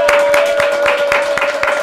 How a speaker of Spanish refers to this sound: Vamos a presentarlo con un fuerte aplauso del corrido aquí en Molusco TV